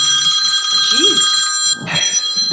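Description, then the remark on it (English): An iPhone ringing with a classic old-fashioned bell ringtone, a bright, continuous metallic trill that sounds loud, with some low background noise underneath. “Is that phone from 1984? It's my iPhone.”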